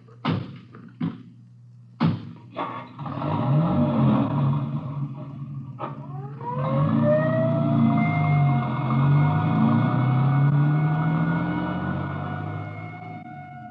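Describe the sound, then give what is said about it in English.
A few sharp door slams, then an engine rumbles to life and an ambulance siren winds up and wails steadily and loudly as the vehicle pulls away. “I'll ride back in the ambulance with the girl.”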